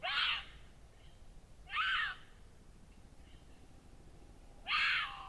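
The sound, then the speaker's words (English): Three harsh, raspy mating caterwauls or yowls from a mountain lion, each about half a second long, separated by pauses over a quiet background, fairly loud. “During the mating season, females produce caterwauls or yowls to attract mates, and males respond with similar vocalizations.”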